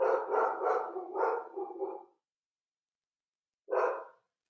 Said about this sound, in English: Thanks for the loving dog here in the background.